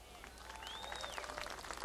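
A room full of people claps steadily for a couple of seconds for the keepers of the inn, a dense, even patter of applause with a faint whistle rising above it partway through.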